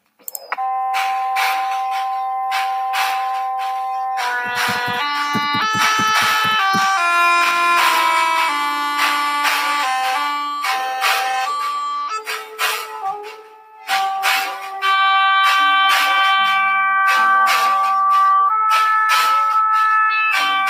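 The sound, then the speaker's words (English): A Moog Grandmother synthesizer, using its envelopes, plays bright, bell-like sustained notes washed in spring reverb, with a flurry of quick pulsing tones in the middle and a brief dip before the melody resumes. No voices. “And what you hear there is the use of the envelopes within the grandmother, the spring reverb, and just the organic nature of the classic, grandmother synth, which is the mini Moog for the new age, for the 21st century.”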